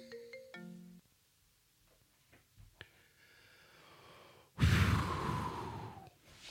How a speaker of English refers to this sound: I'm going to turn off the phone. And I'm going to turn it off right now. I'm going to turn off the phone. It's going off right now.